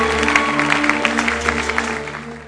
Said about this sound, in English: Clap your hands for the choir.